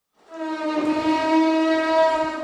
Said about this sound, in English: The train horn as it heads up through the Cahuenga Pass on its way to Universal.